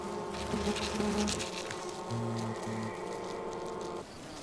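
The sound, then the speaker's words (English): Dense, steady buzzing of many hornets swarming around a bee hive they are attacking, a droning hum layered with shifting wingbeat tones, continuing without pause and with no voices. “The hornets pay little attention to the few surviving bees.”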